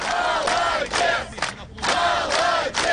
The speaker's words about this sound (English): What a guy, they chant, as strike leader Anatoly Bokun punches the air.